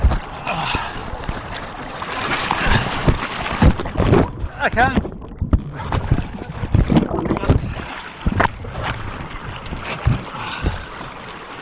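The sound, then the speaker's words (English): Rushing water churns and splashes around a kayak sliding down a river over a weir, with scraping knocks and bumps as it hits rocks, while a person speaks briefly amid wind buffeting the microphone. “I'm hanging with the boat and I'm sliding down the river.”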